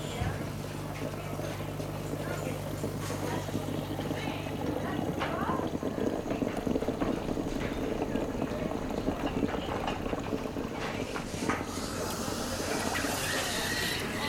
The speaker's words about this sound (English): So just steam being sort of put through milk, and you can smell the sort of slight sweetness.